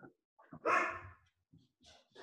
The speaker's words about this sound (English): But my dog is barking.